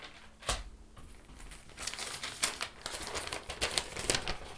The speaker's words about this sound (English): Excuse the rustling from the papers, but I'm reading from my own copy of the Mercury. I'll have to turn pages.